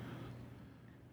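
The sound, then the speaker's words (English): Race cars get back on the gas and accelerate in a short, steady burst in a video replay of a race run, a loud low droning roar with rising and falling pitch, heard alone without talking. “They get back on the gas all around the same time as Jeff Jones did.”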